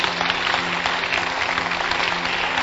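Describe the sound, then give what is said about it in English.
An audience claps for Jesus in a dense, steady burst of applause that stays at an even, fairly loud level throughout, with no voices standing out above the clapping. “Clap for Jesus.”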